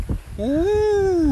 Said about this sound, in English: That was just a beluga whale. I was going to say, that was a weird creature. That definitely wasn't Nessie. That's not how Nessie talks.